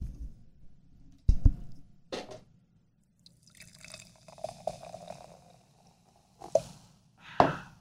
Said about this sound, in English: All right, so I poured a glass for you.